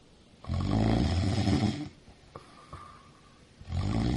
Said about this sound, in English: It was the only way to get this guy to stop snoring.